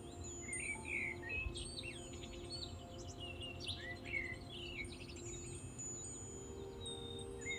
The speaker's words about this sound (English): Waking up at the rise of dawn to listen to the bird song.